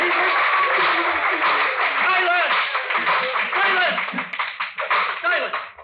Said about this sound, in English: Silence! The sergeant at arms will bring forward immediately the parties that applauded.